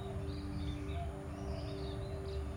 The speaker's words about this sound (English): And think how lucky you are to be here practicing yoga, sounds of the birds all around. The nature is nurturing your practice even more as we move.